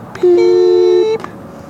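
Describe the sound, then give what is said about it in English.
A single loud electronic beep holds a steady, fairly low pitch for about a second, with a slight overlapping second tone, then cuts off cleanly. No voices are heard. “After the beep.”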